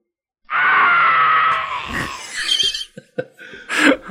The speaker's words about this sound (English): Tormented screams never get old.